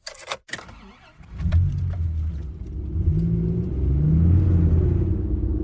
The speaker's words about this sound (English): Now we're in the car en route to our second city of Ottawa.